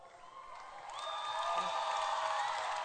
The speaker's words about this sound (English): I have done this before. That's why your hand clap irritates me.